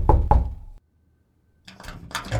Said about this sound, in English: Philip Turdo's room was on the second floor. I knocked.